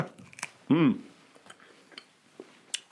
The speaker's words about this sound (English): just going to be chewing on beef jerky for a little while.